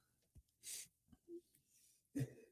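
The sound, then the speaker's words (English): A single sharp sneeze bursting out as a short hissy blast after a quick intake, followed by quieter breathy noises and another brief rough exhale. “God bless you. Thank you.”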